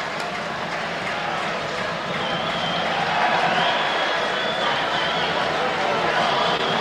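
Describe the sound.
Steady, dense applause at a football stadium as the Morecambe players applaud their roughly 400 travelling fans in the ice cream van stand and a player claps above his head, a continuous wash of clapping and cheering at a fairly even loudness, with a faint murmur of voices mixed in.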